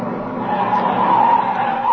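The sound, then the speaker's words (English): A car pulls up with its tires skidding in a loud, sustained screech lasting about two seconds, with steady engine noise beneath it and no talking. “Look at that car come up here.”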